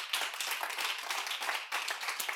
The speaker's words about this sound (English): Can you say amen? Amen. Let's give God a round of applause as we close this morning.